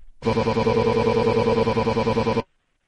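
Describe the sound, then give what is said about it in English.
A phone ringtone trills steadily for about two seconds, a rapid warbling electronic ring heard over a call line while calling a casino poker room. It is loud, with no voices alongside it. “of course, why should they answer the phone?”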